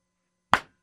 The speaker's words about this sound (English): A lot harder than that. Mm. That hurt a little bit. I tried to slap my hands there, make the noise.